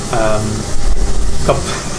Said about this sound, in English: Someone having a shower.